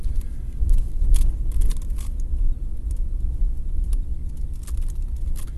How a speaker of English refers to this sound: So I'm driving through here. My truck is 94,000 miles, something like that, with its squeaky blower motor.